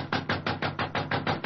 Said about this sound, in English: Oh, he must be in his dressing room. I'll knock again.